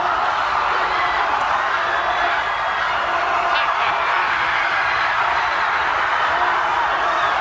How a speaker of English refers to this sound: And they're celebrating in Seward, Alaska, a watch party there at the Del Lindsay Railroad Terminal. They're packed in, cheering on the 17-year-old.